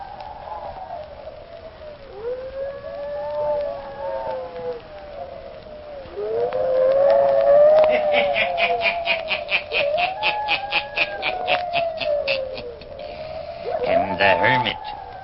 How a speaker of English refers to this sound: Listen in again next week for my hounds howling.